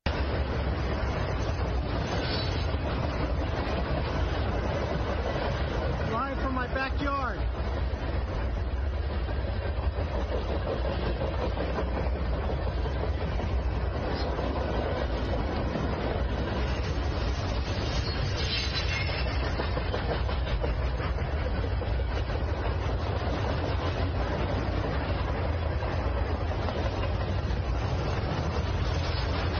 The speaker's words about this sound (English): So you get the point. Long train, military equipment on the train.